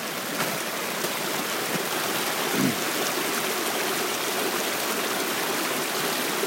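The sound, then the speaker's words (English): Steady rushing and burbling of a running meltwater stream, continuous, with a dense watery hiss filling the whole stretch and no voices. “The sound of living water.”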